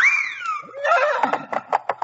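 Six white horses whinny loudly, a high descending neigh that breaks into a run of quick, rhythmic snorting pulses, heard alone without talk.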